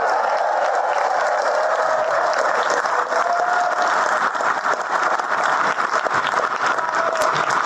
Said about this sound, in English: And listen to that. Listen to that roar. Listen to the roar of the crowd. People jumping up and cheering.